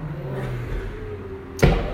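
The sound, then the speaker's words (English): A car engine drones and revs low in the background, then a single sharp, loud backfire cracks out like a gunshot near the end. “There's about five guys with cars that sound like that. That sounded like a shotgun.”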